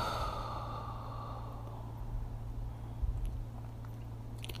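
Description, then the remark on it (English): A long, breathy exhale out through the mouth after a deep breath in through the nose, soft, trailing off gradually over a couple of seconds into quiet with a low steady hum underneath. “Breathing in deep, in through the nose, out through the mouth.”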